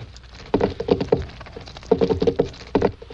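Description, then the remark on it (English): Knocking on a wall from the other side, heard by a prisoner, in short clustered bursts like a coded signal: a quick run of dull wooden taps, a pause, another rapid group, then a final pair. No voices. “He's giving us signals. It's a code. Morse?”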